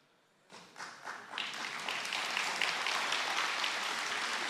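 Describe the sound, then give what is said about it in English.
Applause from a crowd starts with a few scattered claps, then quickly swells into steady, dense clapping that holds at full strength to the end. “Don't clap for me because I'm a work in progress.”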